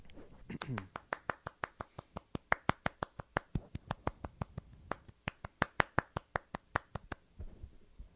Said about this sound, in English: I tried to do little claps. One more time, clap. One more time.